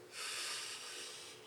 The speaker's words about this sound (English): All right. In and out. Just keep breathing in and out. All the way in, all the way out.